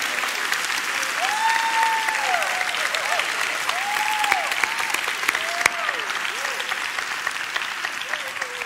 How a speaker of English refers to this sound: Because I thought for this service, just one time only, if everybody could just give a clap, warm welcome offering to all the next gen who are in this service today. Just give them a clap offering.